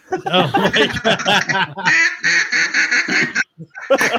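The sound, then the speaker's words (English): A loud duck decoy on a timer quacks in a rapid, raspy series, then breaks into a longer drawn-out nasal call before a final short burst of quacks, in a duck blind. “Oh, hold on, my decoy is on timer. There we go. Welcome to the duck blind, boys.”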